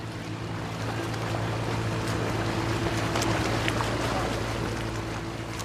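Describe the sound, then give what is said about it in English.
A tour boat cruises along a river, its engine droning steadily with a low hum beneath a constant wash of water, even throughout with no voices. “They followed the ink map that had appeared in the guidebook and climbed aboard a little tour boat with a flimsy roof.”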